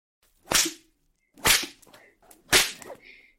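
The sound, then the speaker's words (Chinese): Three sharp whip lashes land about a second apart, each a loud, bright crack with a short swishing tail, and no voices in between. “你这贱狗，看我怎么抽你。”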